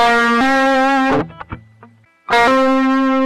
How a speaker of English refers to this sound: A hammer-on is a sick way of saying you slam your finger down on a fret to play the note, instead of picking it with your right hand.